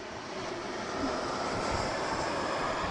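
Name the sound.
jet aircraft flying overhead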